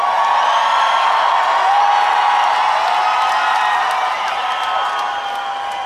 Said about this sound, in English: Give that man a round of applause for being so nice.